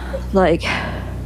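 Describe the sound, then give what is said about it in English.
A voice imitates a boy's short, strained gasp for air after crying so much he couldn't catch his breath: a quick voiced catch in the throat trailing into a breathy rush, over a faint steady hum. “Like gasping for air because he had been crying so much. Like he couldn't catch his breath.”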